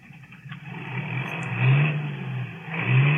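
A powerful engine revs in two rising surges, its low throaty growl climbing in pitch and loudness, then dropping back before swelling again. No one speaks.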